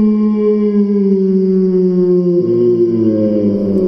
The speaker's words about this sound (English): I say I was about to suggest this, because before I could, another large, dog-sounding creature howled.